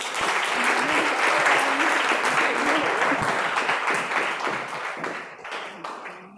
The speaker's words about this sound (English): Tonight, I want to welcome an incredible artist who can help us seek these intense answers within ourselves. So please join me in a round of applause for the wonderful Kiki Farish.